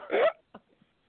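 A single loud, sharp hiccup bursts out, followed by a couple of much fainter little catches and quiet throat sounds. No talking.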